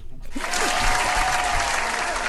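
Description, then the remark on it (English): A burst of crowd applause plays as a sound effect, a dense, steady wash of many hands clapping that starts abruptly and holds at an even loudness for a couple of seconds. “Can we get some claps, Matt?”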